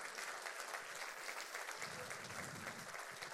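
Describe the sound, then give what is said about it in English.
Steady applause from an audience during a sermon about praising God: a dense, continuous patter of many hands clapping at an even loudness with no voices standing out. “Oh, someone started clapping.”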